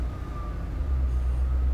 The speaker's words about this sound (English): Is that an engine? Yeah, I guess there's a truck out back. Very close. I was not... About to come through the wall.